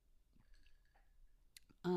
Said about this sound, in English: I'm going to take a little sip of my bevy right now.